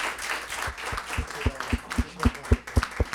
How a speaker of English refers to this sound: Can we please give both Victor and Susie a round of applause?